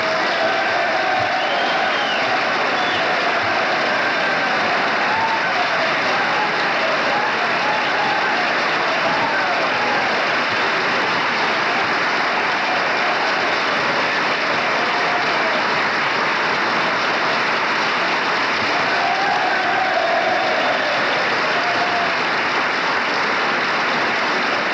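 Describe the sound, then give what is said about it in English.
Legislators, colleagues of Gerald Ford, give a standing ovation at a reference to Ford, the minority leader: a dense, steady roar of clapping from a large crowd that holds at full strength for the whole twenty-five seconds, with no talking over it. “Gerald Ford's colleagues are on their feet applauding, and obviously that reference was to the minority leader, Gerald Ford.”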